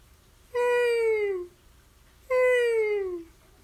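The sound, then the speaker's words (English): Someone imitates a whale call with two long, moaning vocal cries, each about a second and sliding gradually downward in pitch, separated by a short pause. “This is my impression of a whale sound.”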